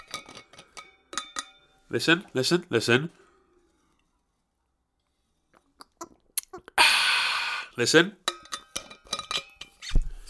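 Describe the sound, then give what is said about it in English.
A stainless steel Chili's water bottle is handled, with sharp clinks and taps, followed by a loud breathy swig as a man drinks from it. The man speaks briefly between the sounds. “I bought a Chili's water bottle.”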